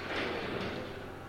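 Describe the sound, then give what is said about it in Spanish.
A door slides shut with a steady scraping rush that fades over about a second, with no clear slam at the end and no talking. “Cierre la puerta.”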